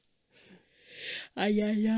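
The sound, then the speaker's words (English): A yawn: a long breathy inhale swells, breaks off, then gives way to a loud, sustained, low voiced groan that holds steady to the end. “God damn it, not you two. Stop yawning.”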